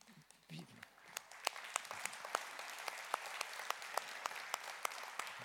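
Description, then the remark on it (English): An audience applauding: steady, dense clapping from many hands, with a few sharper individual claps cracking out above the wash, sustained at an even level throughout. “I don't know who we're applauding for, but I agree.”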